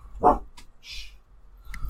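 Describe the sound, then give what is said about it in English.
A dog gives one sharp, loud bark, then a few faint, brief sounds follow with no talking. “My dog's having a moment over here.”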